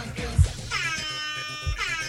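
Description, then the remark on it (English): An air horn sound effect blares in two loud, brassy blasts, the second following right after the first, each a harsh sustained tone with no one talking over it. “Can I get a little bit of air horn action?”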